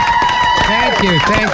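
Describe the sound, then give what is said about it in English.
Studio applause from station staff for Dale Dorman in the Oldies 103.3 studio in Boston breaks out, a steady wash of clapping mixed with loud whoops and cheering voices sliding up and down in pitch, sustained across the whole moment. “Everybody from the stations in the studio, big round of applause for Dale Dorman.”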